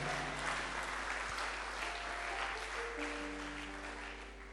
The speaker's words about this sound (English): Somebody clap your hands and say a big amen.